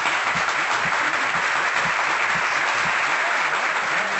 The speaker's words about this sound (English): The great Mike Golic, ladies and gentlemen, here on Radio Row. Let me give him a roaring round of applause.